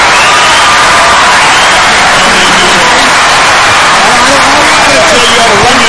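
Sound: crowd clapping sound effect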